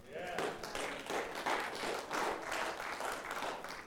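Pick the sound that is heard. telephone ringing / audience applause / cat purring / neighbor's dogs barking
audience applause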